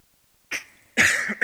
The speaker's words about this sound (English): Excuse me. That was the most awkward cough of all time.